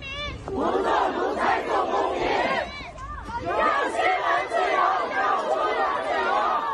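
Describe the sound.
A large protest crowd in Beijing, China, chants loudly in unison demanding freedom, many voices shouting together in two sustained bursts split by a brief pause, dense throughout.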